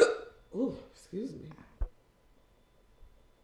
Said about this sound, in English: The hiccup. I kind of belched and the hiccup started.